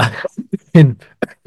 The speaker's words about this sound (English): It's making me cough, guys.